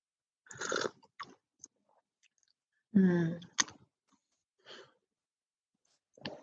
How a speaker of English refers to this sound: And whenever you're ready, I invite you to take a sip of your tea.